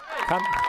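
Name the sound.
crowd cheering sound effect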